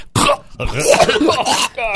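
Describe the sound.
Harsh hacking and gagging, like an animal coughing up a fur ball: a string of rough, wet retching bursts over about two seconds, loud and strained.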